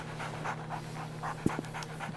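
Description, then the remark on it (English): A dog pants steadily and rapidly, quick rhythmic breaths repeating throughout, with a steady low hum underneath and a couple of brief soft clicks near the middle, as it is about to be taken for a walk to the park. “All right, I'll obviously have the dog.”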